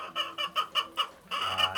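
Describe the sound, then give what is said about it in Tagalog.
Caged laying hens, four per cage in four-level A-frame cages, cluck in a quick series of short, evenly spaced calls, followed by a longer overlapping burst from several birds, moderately loud. “So, sa bawat isang cage ng manok, apat po yung nilalagay natin na mga RTL.”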